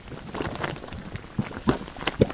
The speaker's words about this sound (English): Now, the first thing that I'm hearing is sort of a bubble. Like when you blow bubbles in chocolate milk. But not quite like that. It's almost like, I hear boiling. Kind of a gurgling. Bubbling, yeah.